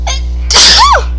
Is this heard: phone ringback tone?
no